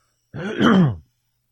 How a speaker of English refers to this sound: Damn, I'm trying to clear my throat every 3 minutes.